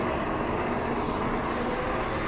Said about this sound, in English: Walking here behind a bus.